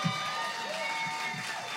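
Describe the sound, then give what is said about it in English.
A round of applause from a crowd for a performer after a song, a dense, steady wash of clapping that holds at an even level throughout, with faint voices mixed in. “Can we just one more round of applause for this rock star right here?”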